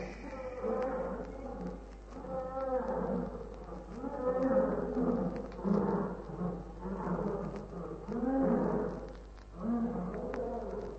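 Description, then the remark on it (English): Lions roar in a chorus of deep, rumbling calls, overlapping in repeated swelling bursts every second or two, loud and continuous throughout, with a steady low hum underneath, as they come to a river to drink. “At least we wouldn't be chewed to pieces by a herd of lions.”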